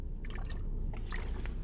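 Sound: water sloshing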